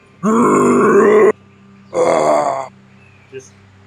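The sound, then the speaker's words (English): A voice imitates the roar of a monster with bits and chunks of deer falling from its mouth, in a tabletop role-playing game: two loud, rough growling bursts, the first longer, the second shorter, followed by a brief faint click. “It is now looking at you, and bits and chunks of deer are falling from its mouth as it roars at you.”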